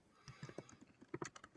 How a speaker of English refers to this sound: You're still typing. I'm not saying typing as in you're paying attention elsewhere. I'm saying the audio, the podcast.